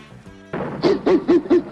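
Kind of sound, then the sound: vocal imitation, voice imitating a dog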